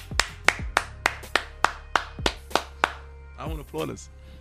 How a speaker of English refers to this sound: You know what? I want to applaud us.